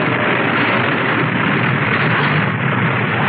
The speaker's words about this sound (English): My candle blew out. My lantern's still lit. And look, there, where the wind tore the paper off the wall.